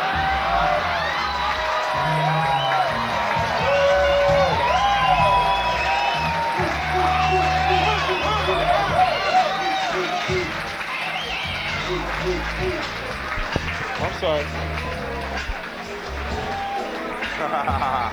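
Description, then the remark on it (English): A large audience claps and cheers steadily for the whole stretch, applauding a performer after a song, with whoops and shouting voices rising above the dense applause. “Can I get one more great round of applause”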